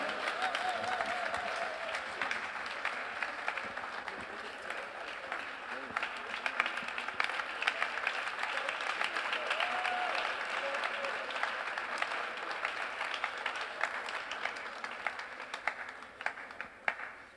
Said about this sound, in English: Thank you very much, Mommy. Oh, can we give Mommy a round of applause?